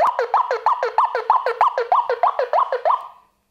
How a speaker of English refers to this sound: And I kind of express these like things just as like a warning sign, a bit like a klaxon going off. So it's just me like holding up an alarm and saying, "We need to beware."